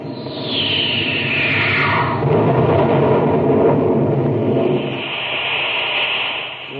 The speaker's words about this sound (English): The heat from his rocket exhaust turned the ice into steam, and it popped the ship out of the cave like a cork.